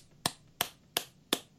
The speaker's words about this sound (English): That's me applauding, if you can't tell.